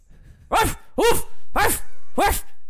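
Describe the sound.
A person imitates a dog, letting out four sharp, loud barks in a steady rhythm, each about half a second apart, with no talking in between.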